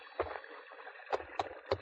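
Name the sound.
water splashing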